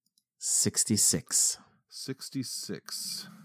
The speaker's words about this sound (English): Roll them dice.